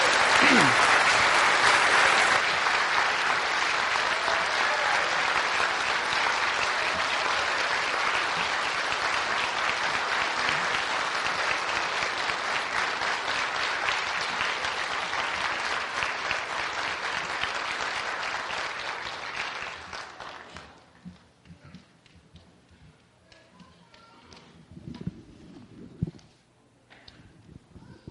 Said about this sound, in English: So can we have another round of applause for these guys, please?